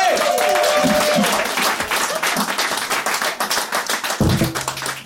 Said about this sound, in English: Our next visitor is also from San Francisco, also on his public relations tour. Please give a big round of applause for Chad Opitz, everybody!